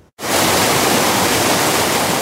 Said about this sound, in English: It is known for its picturesque waterfall, Mill Creek Regional Park, just east of the Kelowna Airport.